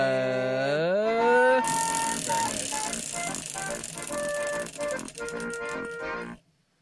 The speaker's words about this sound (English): So, you want to spin that wheel one more time?